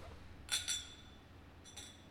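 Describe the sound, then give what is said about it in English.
Glasses clink together in a toast: two bright, ringing taps in quick succession, followed a moment later by a softer pair of clinks, with no talking over them. “All we got to do is this. Just cheers. And we'll just cheers.”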